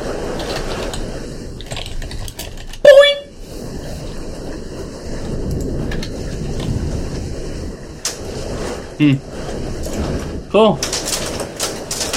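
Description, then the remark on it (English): Hail clatters down steadily, a dense rattle of countless small hard impacts, with a brief chirping whistle cutting through early on; the hail is denting a car. “Is that hail?”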